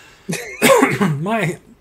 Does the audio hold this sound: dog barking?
no